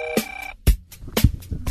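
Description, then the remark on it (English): A telephone gives a short, bright ring lasting about half a second, then stops. A few clunky knocks and rustles follow, like a handset being picked up. No one speaks. “Telephone.”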